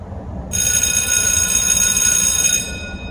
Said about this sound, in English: That's the bell.